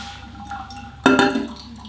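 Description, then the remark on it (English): A soft, steady trickle of water poured gently over Kenyan coffee, topped up to 400 and draining through, with a brighter splash of liquid and a faint clink about halfway through, with no talking. “So, let me just top up the water here. Nice and gentle now, because there we go, 400.”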